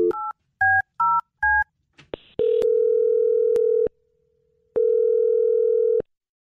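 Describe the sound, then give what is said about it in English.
Four quick touch-tone beeps as a phone number is dialed, followed by two long steady ringback tones separated by a pause, clear with no talking. “I'm going to dial her phone number right now.”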